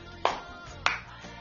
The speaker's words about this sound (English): Somebody give a clap offering to Jesus.